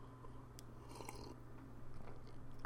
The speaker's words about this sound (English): Just had to take a little sip of coffee right there.